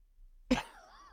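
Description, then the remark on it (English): A single sharp cough bursts out of silence and trails off into a brief voiced rasp, followed by the start of another cough right at the end. “I'm coughing to everybody.”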